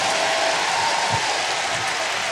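An audience claps and shouts together in a dense, steady roar of applause and raised voices that holds at an even, loud level throughout.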